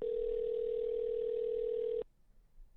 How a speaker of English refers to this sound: Yeah. Yeah, we're ringing now.